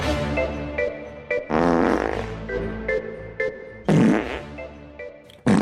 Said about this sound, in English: Like, if I took everybody's voices, dub them over with farts, and then put royalty-free music underneath.